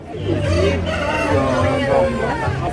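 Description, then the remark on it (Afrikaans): Live chickens cluck and crow amid a busy market, their calls mixing with steady crowd babble and voices at moderate loudness throughout. “Die levendige hoenders.”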